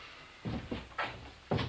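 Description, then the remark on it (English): A wooden door is pulled and its handle turned, producing four short rattling knocks at uneven intervals, moderately loud, with no voices. “You just have to put pressure on the door while you turn. Are you pulling?”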